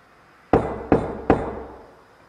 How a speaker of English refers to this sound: I'm going to knock one more time, okay? See if you can copy me.